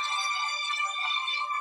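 A mobile phone rings with a steady, bright electronic ringtone, fairly loud, filling the short moment with no voices over it.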